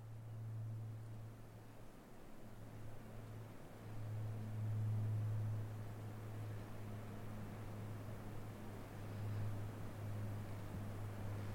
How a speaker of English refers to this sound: The sun was setting. It was totally quiet. Eventually, the whisper of a jet aircraft became audible.